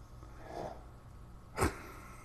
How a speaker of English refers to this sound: Man, Hunter, you got some big time snoring today, buddy.